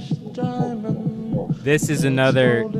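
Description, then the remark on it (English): A steady, quick heartbeat-like thump pulses low beneath a song, with sustained vocals and brighter instruments swelling over the beat in the second half. “And just that thumping is like the dude's heartbeat.”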